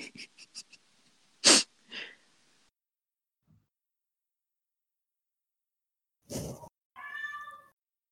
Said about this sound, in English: I've heard a really loud meow. And I'm like, is my cat here? Is she in the ceiling? She's not allowed inside.